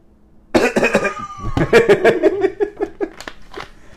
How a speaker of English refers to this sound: Maybe that'll calm that cough down, and you won't.